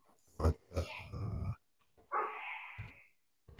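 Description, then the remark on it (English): Dogs bark and growl in a short burst of several sharp barks, followed by a drawn-out whining yelp, moderately loud, with no talking. “Let me let these fucking dogs. All right, yeah. You've been barking in the background the whole time.”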